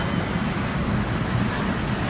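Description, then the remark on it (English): A person imitates an airplane flying, making a steady, rumbling drone with their voice for about two seconds, fairly loud, without pauses or words. “And I said to her, "Baby, just land the plane."”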